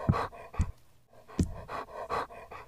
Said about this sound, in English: The donkey was on the winding dirt road of her dreams, the one that led to the city for some time, when she heard the unmistakable sound of a dog panting. Sure enough, an old hunting dog was lying by the side of the road, trying to catch his breath.